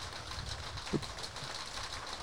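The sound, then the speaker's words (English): Heavy rain pours down in a steady, dense hiss with a low rumbling undertone and one brief soft knock partway through, fairly quiet and unbroken by voices. “That'd be rain. You can hear that. That's pretty good rain, yeah.”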